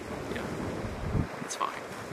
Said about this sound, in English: So it's not easy for today to not get wind. Yeah, it's a windy day.